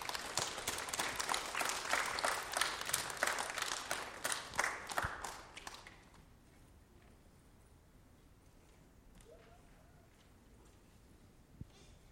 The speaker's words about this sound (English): So let's give those students a round of applause.